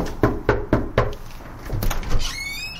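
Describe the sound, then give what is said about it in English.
Four quick, evenly spaced thumps give way to rattling and a latch, then a high squeaky creak as a man opens the front door of his home in Oakland, California. No one speaks. “That's one of the strikers opening the door to his home in Oakland, California.”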